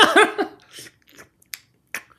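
A brief murmur of voice, then two crisp finger snaps about half a second apart.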